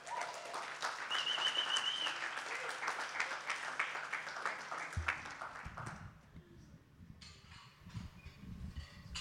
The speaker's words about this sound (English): So give her an extra special round of applause.